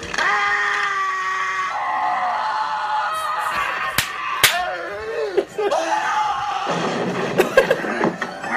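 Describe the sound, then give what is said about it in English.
Men scream and groan in pain in a film scene, Liam Neeson among those screaming as a man's two fingers are broken, their strained, wavering cries running almost continuously and loud, broken by a few sharp slapping impacts partway through. “And this is the guy screaming, Liam Neeson screaming, and Frances McDormand all in a circle.”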